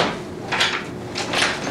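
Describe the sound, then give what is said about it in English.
A door creaks and scrapes open in two drawn-out swishing bursts, moderately loud, with no voices, as a person wearing a mask steps six feet away and opens it. “I'm stepping 6 feet away, mask up, and open the door.”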